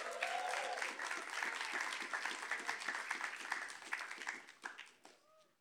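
A crowd applauds steadily for a speaker about to share an update about a food bank, with dense overlapping claps sustained for several seconds before thinning out into a few scattered final claps.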